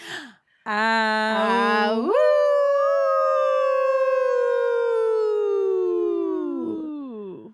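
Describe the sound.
A loud, drawn-out howl from a human voice imitating a wolf: a short low note leaps upward, then holds and slowly sinks for several seconds before trailing off.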